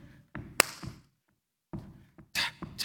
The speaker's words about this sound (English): So I love that Jesus made my whole entire body to be music. Yeah? I can stomp my feet.